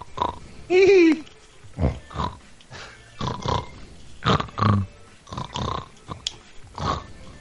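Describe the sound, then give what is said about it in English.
A voice imitates a hog with a rapid series of rough, snorting grunts, fairly loud, sounding much like heavy snoring, with a brief higher squeal near the start. “You sound like my stepdad when he snores.”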